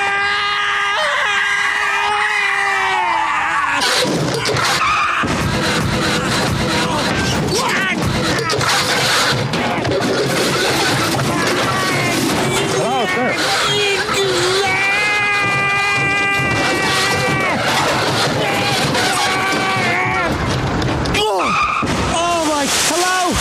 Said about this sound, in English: Oh, I just crashed the car. The squirrel clamped onto my face and blinded me, and I just smashed into all kinds of cars and then bashed into the side of the concrete divider.